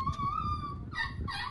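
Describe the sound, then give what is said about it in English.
A baby cries in the background: a long, steady wail followed by two shorter, sharper cries, heard over low rumbling room noise with no talking. “Is this baby crying in the background?”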